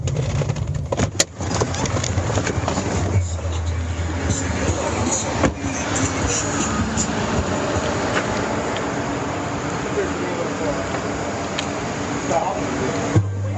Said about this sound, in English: I start this audio the moment they get out of the car. You hear the car door.